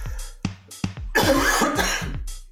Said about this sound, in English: I do need to cough.